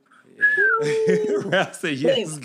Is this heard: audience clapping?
no